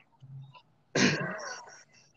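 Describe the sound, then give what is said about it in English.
A single sudden sneeze bursts out, loud and sharp, trailing off into a breathy rasp within about a second, with quiet background noise before it. “God bless you.”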